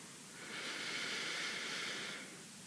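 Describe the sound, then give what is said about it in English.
A slow, deep belly breath in and out, an airy hiss that swells gently and fades over a couple of seconds, with no talking around it. “And then let's try again to breathe in the belly. And let it out.”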